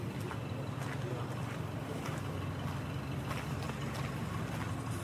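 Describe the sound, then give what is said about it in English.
A steady low engine rumble of a canal boat chugging past, heard from a canal path while walking towards a tunnel, with light wind buffeting and faint scattered outdoor noises over five seconds. “Canal boat going past.”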